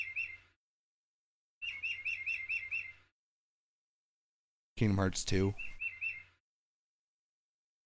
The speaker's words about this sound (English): Okay, so they got this clock that has bird chimes every hour.